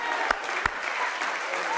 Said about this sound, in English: Hallelujah. Hallelujah. Give God a hand clap.